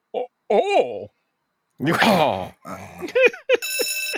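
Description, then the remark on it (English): Muffled voices and a noisy burst of activity give way to a bright, metallic bell ringing at the very end, sustained for about half a second, fairly loud. “Anytime a bell rings...”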